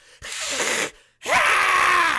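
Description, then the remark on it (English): A person imitates a creature's intimidating shriek at its enemy: two harsh, breathy bursts, the second longer and louder with a rising then wavering screechy pitch, separated by a brief silence. “If attacked, it stands up on its hind legs, bares its fangs, and shrieks an intimidating manner at its enemy. I can do an impression of that if you want.”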